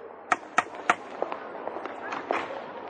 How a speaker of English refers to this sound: Here, he thumped vigorously on the pavement with his stick before going up to the door.